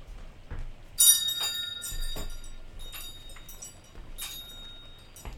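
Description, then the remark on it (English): Christmas bells ring out in overlapping peals, with bright strikes repeating every second or so and long shimmering tones hanging between them over a low background rumble. “The bells are ringing for you this Christmas holiday.”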